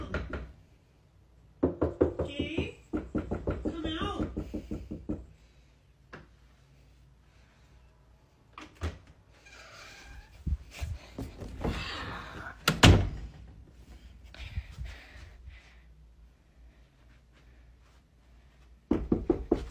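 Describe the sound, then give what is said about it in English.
Rapid, repeated knocking on a door comes in a loud burst, followed by scattered softer thuds and one sharp bang, then another brief flurry of knocks at the end. “And it was like knocking too. And it was knocking.”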